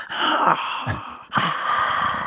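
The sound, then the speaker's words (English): A person imitates the labored wheezing of a dog struggling to breathe, its collar too tight on its neck, with two strained, raspy breaths in a row, each a harsh, airy rasp with a tight, whistling edge, loud and continuous with a brief break between. “He was struggling to breathe.”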